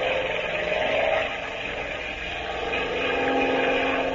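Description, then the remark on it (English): A propeller plane's engine drones steadily and loudly throughout as it flies a torpedo attack run, a dense, throbbing roar with a faint pulsing hum and no pauses or voices. “You'll feel the plane lurch a little when I release it.”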